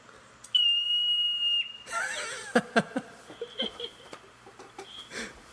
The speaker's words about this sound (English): But that's a marmot. That's how it screams. It's this super high pitched thing, and it looks like a beaver, and it's super cute, and how it screams. It's so cute.